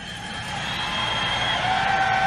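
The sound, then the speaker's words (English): A large rally crowd cheers in a steady, loud roar that swells slightly over two seconds, with piercing whistles and whoops streaking through the din. “What a terrific crowd this is.”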